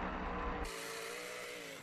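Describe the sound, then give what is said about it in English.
A rally car's engine roars with a low rumble, then gives way to a steady gritty hiss as the car drifts across loose gravel on a barren mountain road above the tree line, continuous throughout. “Nice big drifts.”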